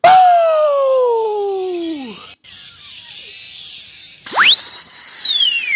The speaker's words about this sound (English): Slide whistle.